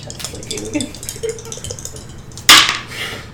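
Dice, including a D100, rattle with a few light clicks, then land in one sudden, loud, sharp clatter that rings briefly and fades. Faint voices murmur underneath.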